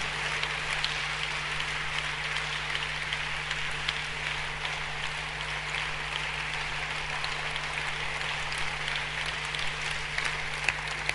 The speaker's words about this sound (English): But Jesus, clap for Jesus. And I mean it. I mean, clap for Jesus. We must clap for him. He's a great man. He's a very great man. He's awesome. Clap for Jesus.